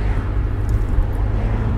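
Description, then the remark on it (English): A steady, low rumbling drone of a car driving along Route 19, with constant engine and tire noise, no other distinct sounds standing out. “Anywho, right now, I am driving on a stretch of road called Route 19.”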